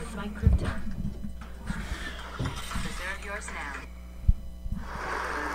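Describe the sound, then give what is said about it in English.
A steady, low electrical hum drones continuously beneath everything, with people talking and occasional knocks and clatter over it. “I got a hum.”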